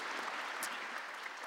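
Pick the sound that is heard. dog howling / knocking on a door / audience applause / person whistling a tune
audience applause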